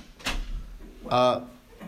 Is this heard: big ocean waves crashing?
no